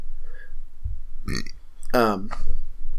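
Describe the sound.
A loud sneeze: a sharp intake and burst followed by a strained, voiced blast that trails off, with a faint murmur of voices in the background.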